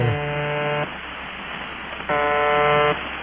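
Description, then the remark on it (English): A shortwave radio station's repeating buzzer tone, broadcast since 1973, sounds in two long, harsh buzzes, each under a second, separated by a gap of crackling static hiss, steady and fairly loud with no voices. “It sounds like an alarm clock, like an old school alarm clock, doesn't it?”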